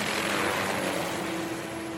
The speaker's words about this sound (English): And I remember, I don't know if I'm imagining it, but I remember hearing the whir of helicopters. Those were the helicopters that were taking the Marcos family out of the presidential palace.